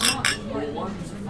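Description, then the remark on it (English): Glasses of Lost and Grounded beer clink together twice in quick succession for a toast, bright, followed by a low murmur of background voices. “So cheers.”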